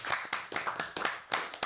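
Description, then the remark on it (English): Quick, sharp hand claps, about seven or eight in a brisk irregular rhythm over under two seconds, bright and snappy with no voices over them. “Live clap.”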